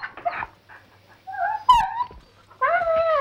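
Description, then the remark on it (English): A voice imitates a fox's yelps and whimpers: a string of high, nasal cries with a sharp squeal in the middle, ending on a longer whining yelp, fairly loud. “Fine, except now I am full of foxes. Listen!”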